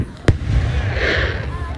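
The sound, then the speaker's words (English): A single sharp firework bang goes off during Independence Day 2021 fireworks, followed by a crackling, hissing burst and a low rumble, with faint voices in the background. “Happy Independence Day 2021 - Fireworks, Commentary and More”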